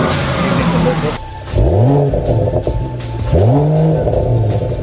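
A newly purchased car's engine revs up twice in quick succession as it is driven away, the pitch climbing each time over a steady, loud idle rumble.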